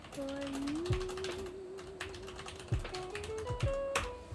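Someone types a message on a keyboard, producing a scattered, irregular run of sharp key clicks and taps at a moderate level, over a steady low humming tone.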